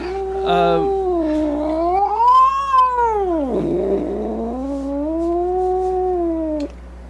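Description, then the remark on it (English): A cat in heat caterwauls in one long, wavering yowl that rises, dips into a rough growl, then climbs again before cutting off, loud with no one speaking. “I think that cat's in heat.”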